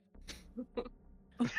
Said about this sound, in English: It's a pandemic going around the city. Everyone seems to be coughing.